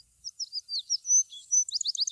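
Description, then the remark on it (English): A wood sparrow, also called bush sparrow, sings alone: a string of sweet, high whistled notes that quicken into a rapid trill toward the end, clear against a quiet background. “He prefers remote, bushy, heathery fields, where his song is one of the sweetest to be heard.”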